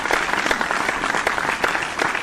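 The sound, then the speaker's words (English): A burst of steady applause, many hands clapping in a dense, continuous patter at an even loudness throughout, with no voices standing out. “Yay! Clap.”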